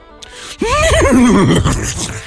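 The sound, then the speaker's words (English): A person imitates a horse's whinny, a loud vocal neigh with a wavering, descending pitch that trembles for about a second and a half before trailing off. “The horse is hard.”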